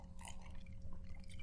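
Quiet slurping sips of a drink, a couple of soft wet mouth sounds over a low steady hum, with no talking.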